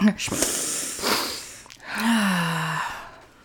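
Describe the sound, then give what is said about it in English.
A harsh snorting choke followed by a strained, wheezing gasp with a falling pitched whine, like someone struggling to catch their breath, no words spoken. “I just choked snorting.”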